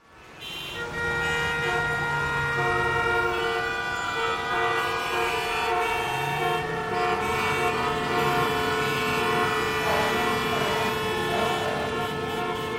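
A dense traffic jam with many car horns honking at once, long overlapping blasts layered over a steady engine rumble, loud and continuous throughout with no one speaking.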